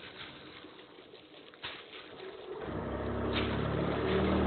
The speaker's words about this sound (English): Does sound like a plane. Sounds like an airboat. That's serious buzz, man.